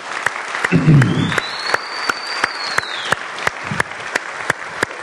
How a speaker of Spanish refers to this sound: Así que vamos a darles nuevamente un fuerte aplauso a todas las mamás.